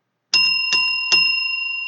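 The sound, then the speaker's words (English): A bell is struck three times in quick, even succession, bright, its clear metallic tone ringing on and sustaining after the final strike. “I'm going to ring a bell, and then I'm going to talk about other things.”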